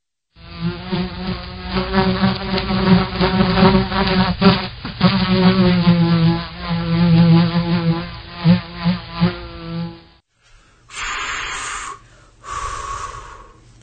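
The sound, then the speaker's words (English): Bees hum in a loud, sustained buzzing drone that wavers for about ten seconds, then stops; after a brief gap come two shorter, thinner buzzing bursts. No one speaks. “Why do bees hum?”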